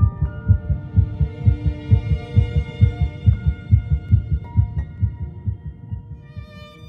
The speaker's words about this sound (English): heartbeat can be detected